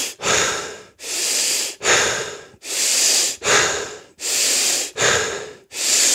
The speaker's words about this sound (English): And I learned this from Mark Devine at SealFit. It's a tactical breathing methodology where you do a quick inhale and exhale 21 times. So it literally sounds like this.